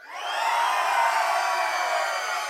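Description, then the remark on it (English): A crowd of children down front at a baptism celebration screams together at full volume as a warm-up, a dense, high-pitched roar that swells quickly and holds steady for a couple of seconds before easing slightly. “I wanna hear you scream really loud. One, two, three, go.”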